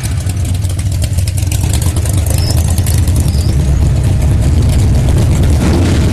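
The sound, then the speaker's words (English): An Italian sports car engine rumbles loudly, a deep steady throaty drone that swells slightly toward the end, with no one speaking over it. “Is that one of those red Italian things?”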